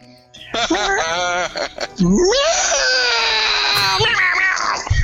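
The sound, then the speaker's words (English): A person's voice imitates a cat yelling to go to the window, giving a short wavering mew followed by a long, loud, drawn-out yowl that rises and then slides down, alone. “Meow meow to the window.”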